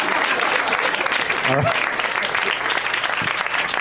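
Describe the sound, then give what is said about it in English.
Steady audience applause for Paul F. Tompkins fills the whole stretch, a dense crackle of many hands clapping at an even loudness, with a brief voice rising out of it about midway. “I always like to scan and see if nobody's clapping.”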